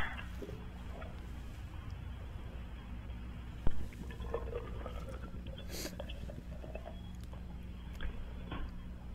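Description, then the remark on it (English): A single sharp pop of a beer can tab as it is opened for a joke home COVID test, then several seconds of soft fizzing and trickling as the beer is poured, over a steady low hum. “Open a can of beer.”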